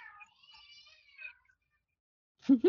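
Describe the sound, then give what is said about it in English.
A child's voice imitates a cat's meow: one drawn-out, wavering, high-pitched mew lasting over a second, quiet, then a short louder vocal burst after a pause. “Is it a cat or a child?”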